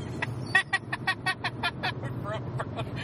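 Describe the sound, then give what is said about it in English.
A voice imitates a car engine with a rapid string of sputtering, revving pulses, close and fairly loud over a low background hum, lasting about three seconds. “Does he even say vroom vroom in the movie?”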